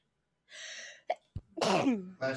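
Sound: sneeze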